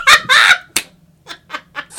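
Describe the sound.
A voice imitates a pigeon slamming into something: two loud, harsh squawking bursts and a sharp yelp, then three quieter, clucking squawks trailing off at a steady pace.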